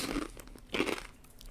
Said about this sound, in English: So it's going to be loud. I'm a chomping a Dorito.